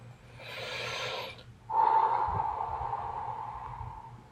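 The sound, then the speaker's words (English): A slow, deep breath: a soft airy inhale followed by a longer, louder breathy exhale, with no talking. “So with that, please take a moment, find a quiet and comfortable space, and let's focus on our breathing. Inhale and exhale.”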